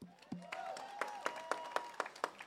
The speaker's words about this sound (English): So before we start, we definitely wanted to, you know, acknowledge the people. Yeah, please clap it up for them.